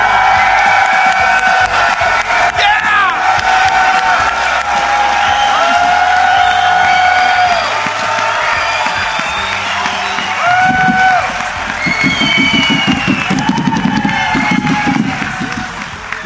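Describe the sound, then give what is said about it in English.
A live audience in Nashville, Tennessee applauds and cheers loudly throughout, with whoops and shouted voices rising over dense, steady clapping, the crowd noise swelling again near the end. “It's a rowdy crowd.”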